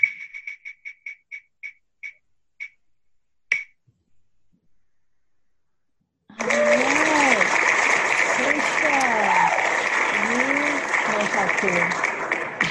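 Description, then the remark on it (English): A run of quick, evenly spaced clicks from a spinner wheel, clicked to spin during a drawing, slows to a stop, followed by a burst of loud crowd applause and cheering sound effect from the wheel that continues steadily to the end. “So if y'all are not going to clap, then the wheel will clap for you.”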